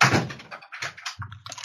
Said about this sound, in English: Wait, did you literally just leave? Huh? I heard a door open and close. Yeah, I had to go process this.